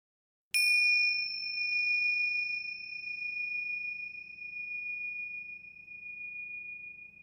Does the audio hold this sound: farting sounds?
no